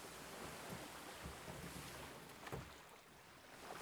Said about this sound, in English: You reach the shore and pull the boat up onto the beach.